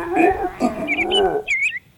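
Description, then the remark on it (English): A bird-tweeting sound effect used for the Tweeting Dead segment: a low, drawn-out groaning tone gives way to a few quick, high chirps and a warbling tweet near the end, loud. “And here is our very cool Tweeting Dead sound effect.”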